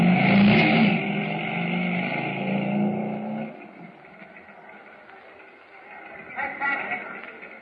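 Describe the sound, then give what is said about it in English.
A motorcycle engine roars and revs loudly with a deep, throbbing rumble for a few seconds, then quickly fades as it rides away, leaving only faint background noise. “Now, mount the motorcycle and get ready.”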